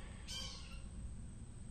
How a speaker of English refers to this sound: It's two birds fighting. It could be two birds fighting.